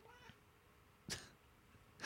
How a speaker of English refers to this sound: This kitty's so loud.